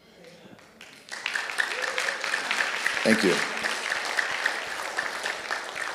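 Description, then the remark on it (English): A brief spoken thanks, then an audience bursts into loud, sustained applause: a dense, steady patter of many hands clapping that continues without letting up to the end. “I don't do it for the applause.”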